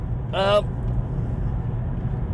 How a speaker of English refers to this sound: Another show from the cab of a car. Driving down the road.